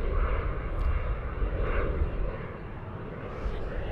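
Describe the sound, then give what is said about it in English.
A loud, steady roar of an airplane flying by an airport next to a home fills the whole clip, a broad rumbling wash of engine noise that holds constant without pause and without any voices. “And yeah, I do live next to an airport, so I get this. around the clock.”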